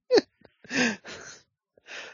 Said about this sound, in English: Oh, God bless you.